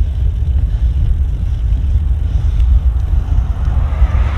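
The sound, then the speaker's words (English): A car rumbles along a road through a quiet forest, its low engine and tire drone steady and fairly loud throughout, with no voices and only faint hiss above the rumble. “Just me and the trees. And the car about to come.”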